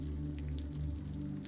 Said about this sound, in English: Each drop brings its own sound and beat to come together in a soothing orchestra of clean rain.